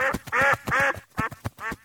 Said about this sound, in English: What did she say? She says Mount Mailbox is in the no-fly zone. Wait, you speak duck? I do.